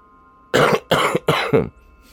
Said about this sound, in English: You start hearing a few of them here and there coughing.